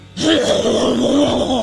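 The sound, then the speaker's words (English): A voice imitates someone retching while yelling: a loud, sustained guttural groan with a strained, gurgling rasp, held steady for over a second after a sudden start. “friend who yells and throws up at the same time. It is guttural. It's like, like really loud.”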